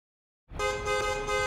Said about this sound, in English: Suddenly, the furious honking of a fast-approaching cab pulled me back into the here and now, and brought to my attention that I was, in fact, standing in the middle of the road.